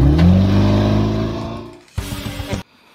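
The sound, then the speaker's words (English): A classic car engine revs loudly, its deep rumble winding down over a second or so before a short, sharp second rev bursts out and cuts off abruptly. “And as always, remember to take your classic out because you will make someone's day when they see that car.”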